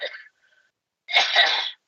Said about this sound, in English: She sounds like she's coughing through an old timey radio. It's because I put my hand on the mic. It was great, though.